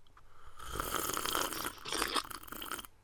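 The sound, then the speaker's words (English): A long, loud slurping sip of still-hot tea, a noisy airy draw that lasts about two seconds with a brief catch midway, with no talking. “Let's both take really satisfying sips of our warm beverages.”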